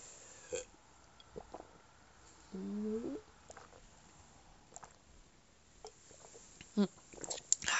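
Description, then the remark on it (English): Quiet sipping and gulping of water during a short water break, with soft wet clicks and swallows spread out over several seconds and a brief throaty, burp-like sound partway through. “And I'm gonna take a really quick water break. So let's sip our beverage together.”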